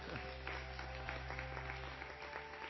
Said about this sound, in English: Thank you so much. Give them another clap, will you?